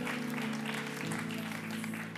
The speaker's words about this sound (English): Some of you guys are clapping when you should be walking.